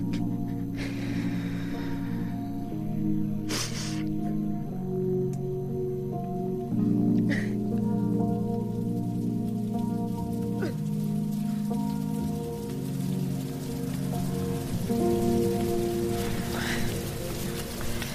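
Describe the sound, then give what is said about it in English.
Steady rain patters on a hard surface with a constant hiss and a few louder, sharper drips, while low sustained tones hum underneath. “Rain seems to be getting worse.”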